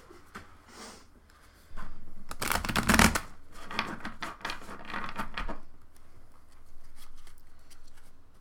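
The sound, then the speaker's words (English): A deck of tarot cards is shuffled, with bursts of crisp riffling and flapping, loudest around the middle, then softer rustling and handling as the cards settle. “Anytime now. It's gonna be shuffled the right way.”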